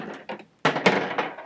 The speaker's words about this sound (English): Each one of you roll 1 dice.